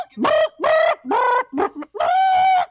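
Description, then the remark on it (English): A bird cooing, five loud, throaty calls in quick succession with short gaps between them, alone with no talking. “Get the fucking bird off me!”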